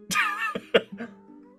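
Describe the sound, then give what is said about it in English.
A female cat gives a few short vocal cries in quick succession, with a sharp burst at each onset and a faint tone trailing off afterward. No one speaks. “Don't mind my cat. She's helping.”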